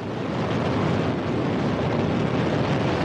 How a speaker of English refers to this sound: And liftoff. The core stage's four-chambered RD-108A engine and its four strap-on four-chambered RD-107A boosters all ignited at liftoff, launching the 50-meter-tall rocket into the darkening skies.